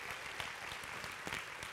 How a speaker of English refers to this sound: Turn around, take an applause right now.